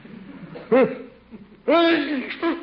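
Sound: sneeze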